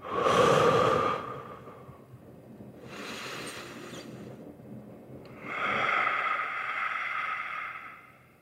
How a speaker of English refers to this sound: So watch this. I'm going to take deep breaths.